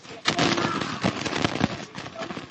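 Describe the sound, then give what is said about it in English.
A fire burns with a steady roar throughout, punctuated by sharp crackles and pops at irregular intervals, loud, with no single big blast. “Something's exploding. No, that's just fire. It's not a full-on explosion.”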